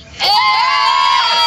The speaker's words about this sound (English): Listen, guys, thank you so much for talking to us today. Can we have a big cheer because it's half term?